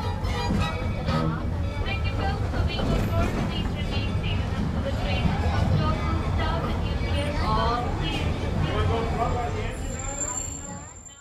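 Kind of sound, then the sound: vehicle, steam train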